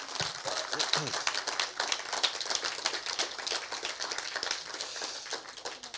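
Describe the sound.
A round of applause from a crowd for a woman invited to come up and join the speaker, steady dense clapping that holds at a fairly even level for the full six seconds, with a little murmur of voices underneath.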